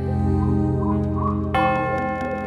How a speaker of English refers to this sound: Now, as the clock strikes 12, and the moon comes out to play, the time has come for Broggan to begin a brand new day.